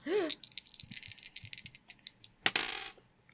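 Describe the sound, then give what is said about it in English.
Dice are rolled for a dodge in a game, rattling and tumbling across a hard surface in a quick run of clicks and taps, ending in a louder clatter before settling. A brief voice sounds at the very start. “Okay, roll a dodge for me.”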